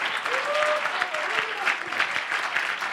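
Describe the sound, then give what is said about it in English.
An audience at a church service claps together as praise to the Lord in a steady, dense burst of applause lasting the whole moment, with a few voices calling out faintly over the clapping. “Give the Lord a good hand and clap of praise.”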